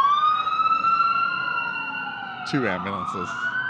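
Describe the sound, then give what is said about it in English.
Loud emergency sirens wail continuously with slowly rising and falling pitch, as two ambulances and a fire truck drive past; voices briefly break in near the end under the sirens. “Two ambulances. Oh, fire truck.”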